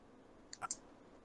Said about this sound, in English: I hear mouse clicking. That was a pen, sorry.